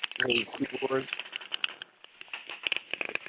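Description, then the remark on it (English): A voice over a thin, phone-quality line starts briefly, then breaks apart into choppy crackles and clipped, garbled fragments, like a bad connection cutting in and out. “I'm losing you.”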